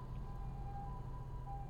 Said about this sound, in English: Got an ambulance crossing here.